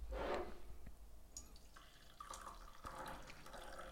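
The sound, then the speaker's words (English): Batch brew coffee pours steadily into a cup, a splashy gurgling stream that runs continuously for a few seconds with small drips and clinks, no voices. “But anyways, let's pour some batchy.”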